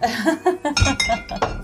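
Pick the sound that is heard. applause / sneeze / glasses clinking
glasses clinking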